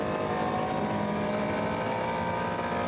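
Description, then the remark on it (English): The engine of racing car number 960 drones steadily and loudly for a few seconds, a dense sustained roar with a constant pitch and no speech over it. “Engine note you hear in the background is from car 960.”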